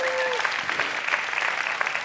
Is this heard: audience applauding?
yes